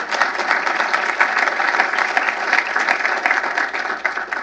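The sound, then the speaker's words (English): An audience at the Heritage B.C. Lee Lecture on Asia Policy applauds the diplomatic corps for their service, steadily, a dense wash of many hands clapping at once with no break, loud and even throughout, with no voices on top. “Yes, round of applause for you.”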